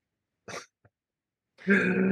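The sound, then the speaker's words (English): A single short, forced fake cough burst, a tiny click after it, then a sustained voiced sound from the same person, like a drawn-out throat noise. “Cough, cough. Also better wrestler, cough, cough.”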